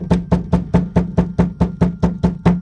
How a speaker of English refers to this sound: The knocking continued with more urgency.